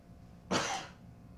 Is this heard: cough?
yes